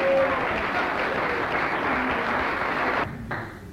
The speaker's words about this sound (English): Come on, give him a clap.